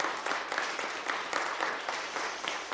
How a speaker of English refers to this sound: Students, can we give them a round of applause?